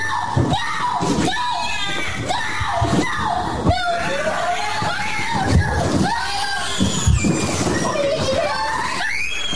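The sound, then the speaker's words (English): Several children in distress cry and scream over one another in a noisy commotion, their high, wailing voices rising and falling continuously and loudly, with some splashing in the background. “And I love seeing little children in distress, crying and screaming.”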